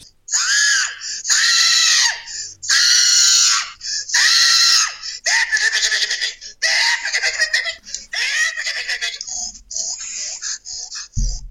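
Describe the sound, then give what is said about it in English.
A man squeals and screams like a pig in a string of about eight loud, shrill bursts, a recorded phone message played back from a laptop, with short gaps between them and no talking. “Hey, piggy, piggy, piggy, screaming.”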